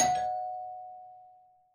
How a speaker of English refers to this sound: As afternoon turned to evening, I heard my doorbell ring.